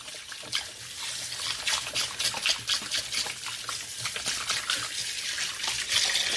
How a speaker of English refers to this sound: So I'm just going to wash my hands.